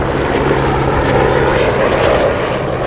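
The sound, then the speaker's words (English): A helicopter drones steadily overhead, its rotor thrum and engine roar loud and continuous throughout, with no voices. “Maybe that helicopter scared them all away.”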